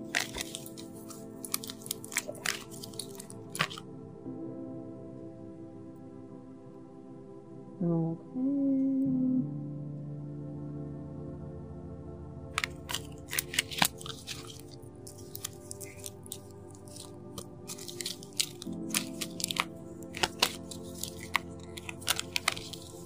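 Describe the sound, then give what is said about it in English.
Crisp papery shuffling of a tarot card deck for a Valentine's Day reading in dense rustling bursts, broken by a quiet pause midway with a brief soft tone, then the shuffling resumes steadily. No one speaks. “I'm still shuffling because I want a thorough reading for this Valentine's Day.”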